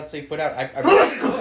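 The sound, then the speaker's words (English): A single sharp sneeze bursts out partway through, loud, while a man keeps talking around it in a casual conversational tone. “Bless you.”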